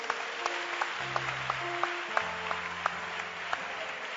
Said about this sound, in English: Clap for Jesus.